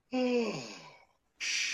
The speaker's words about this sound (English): Look, I saw him yawn.